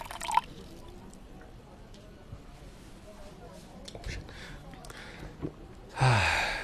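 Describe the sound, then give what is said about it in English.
Cold water splashes and trickles in short, quiet bursts, then pours more steadily and loudly into a cup near the end, with faint breathing and low voices in the background. “Here, let me pour you some cold water, auntie.”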